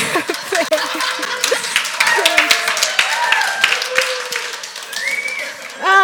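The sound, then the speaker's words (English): An audience bursts into steady, dense clapping for several seconds, mixed with scattered cheers and high whooping voices rising over the applause. “If I don't get claps, I die.”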